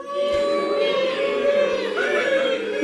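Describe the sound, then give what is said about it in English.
An audience doing a 'nerd alert' together, voices imitating an alert siren in a loud sustained wail held steadily for about three seconds with a slight rising warble near the end. “and it would say, all right, this Sunday, at this time, we're going to do the nerd alert, and everyone just knew to make a siren noise, like an alert noise, and so I thought we could try that, just for old time's sake.”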